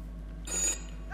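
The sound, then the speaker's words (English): A single brief burst of a telephone ringing, bright and trilling, heard once over a low steady hum with no one talking. “Could somebody get that phone?”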